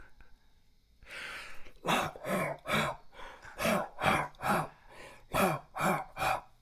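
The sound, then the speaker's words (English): A string of harsh, breathy coughs from people, about eight or nine bursts in a quick steady rhythm, fairly loud, following a short raspy intake of breath. No talking. “Are these just people coughing.”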